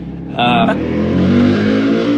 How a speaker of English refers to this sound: Sorry, motorcycle passing.